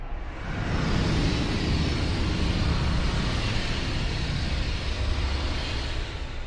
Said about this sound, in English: Then a train passed.